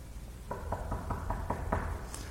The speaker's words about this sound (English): Knocking on the door, ringing the bell, ding dong.